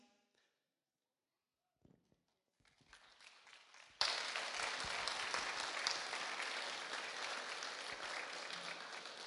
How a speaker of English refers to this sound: That's worth the clap.